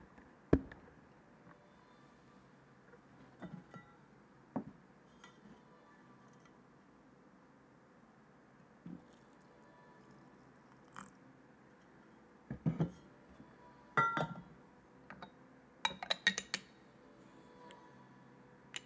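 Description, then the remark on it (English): Light clinks and ticks from a small glass teapot of about 200 milliliters while tea is poured, scattered and irregular at first, then clustering into quick bursts near the end, with no talking. “The teapot I'm using is a glass teapot, 200 milliliters or so, so it's pretty small, and when I pour the hot water in and put the lid on”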